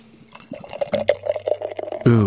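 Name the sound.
beer being poured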